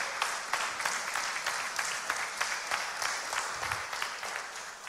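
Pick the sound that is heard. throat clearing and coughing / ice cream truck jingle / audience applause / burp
audience applause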